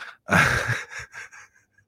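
A loud yawn: a long breathy intake swelling into an open-mouthed groan, then trailing off in a few shorter, softer voiced breaths.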